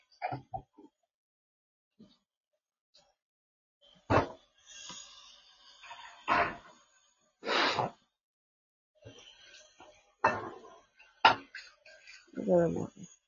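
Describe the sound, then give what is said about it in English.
Dishes being washed, with pots and cutlery clattering in sharp, irregular clanks and scrapes, mixed with a few breathy vocal sounds like gasps or sighs. “This is getting on my damn nerves, washing these goddamn dishes every single day.”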